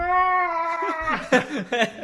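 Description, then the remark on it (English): A human voice imitates a pig's squeal, heard in the distance: one long, strained, high-pitched squeal, then a few short, choppy vocal bursts trailing after it. “Did you hear a pig squealing?”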